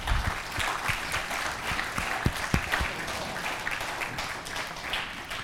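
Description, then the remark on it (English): A crowd applauds mothers steadily for several seconds, a dense wash of many hands clapping with a few sharper individual claps standing out, holding a fairly even, moderate loudness throughout. “Can we just give all of our moms a big round of applause right now?”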